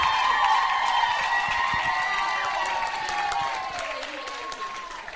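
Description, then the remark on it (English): A crowd bursts into sustained applause for a speaker being introduced, dense steady clapping with voices cheering and whooping over it, holding loud for several seconds before easing off slightly at the end. “So can you guys give, just a ridiculously massive round of applause”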